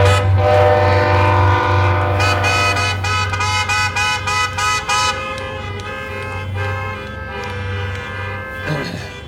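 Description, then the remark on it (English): A train horn blares loud and sustained, then sounds in a quick series of short rhythmic blasts before holding again as the train rumbles past. No one speaks. “Even the conductor's giving a praise to the Lord today. Amen. An amen from the railroad company.”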